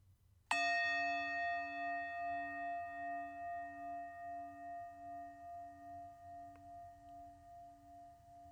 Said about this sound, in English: Now, while you are focusing, while you're in the resonance of the bell, for that moment when the bell was you, or when you were wholly focused on your breath,